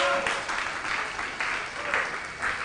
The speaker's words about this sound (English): Some of you are not clapping. You are suspects.